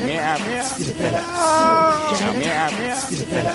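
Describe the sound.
Actor Sir Ian McKellen, in a movie, imitates a cat with several drawn-out, wavering meows in quick succession, loud, the longest one stretched in the middle with a rising and falling pitch.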